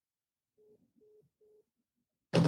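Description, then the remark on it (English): A phone's call-ended tone: three short, steady mid-pitched beeps in an even rhythm, fairly quiet and clear, then an abrupt loud burst of noise right at the end. “If I answer the phone when I'm live on the podcast, I could hang up on you.”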